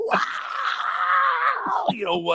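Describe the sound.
A single voice belts out an imitation of the opening rock vocal scream of a song, sung as lead vocal at a Rock Band video game get-together: a loud, strained, sustained howl lasting nearly two seconds before breaking into a wavering, cracking tail.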